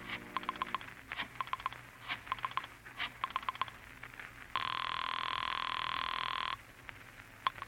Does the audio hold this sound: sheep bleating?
no